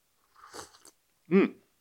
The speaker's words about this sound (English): So I'm going to sip some tea.